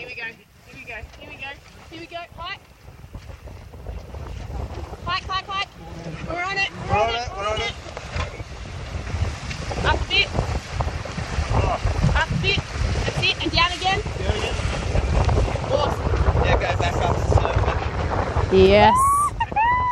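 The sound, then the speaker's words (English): A small boat, a Thompson 8, rumbles and slaps across choppy tugboat wake waves, with steady wind buffeting and splashing surges building through the ride, while voices talk intermittently over the noise. “Here we go, another set of tugboat waves.”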